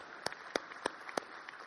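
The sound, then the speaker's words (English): An audience claps in a steady rhythm, with four sharp, prominent claps and a few softer ones in between, heard without any talking over them. “It's good to break out sometimes in clapping just because we recognize we need to affirm that.”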